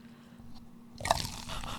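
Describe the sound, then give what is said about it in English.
A fizzy drink is poured from a bottle into a cup: after a near-silent start, a bright crackling, hissing fizz rises suddenly and keeps going steadily to the end, with no talking. “Now let's pour it into the cup.”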